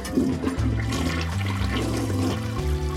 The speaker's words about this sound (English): To my mind, it's like the whoosh of the toilet as you flush almost serves as a mind eraser. And then the invisibility of the whole infrastructure enables that flush and forget environment.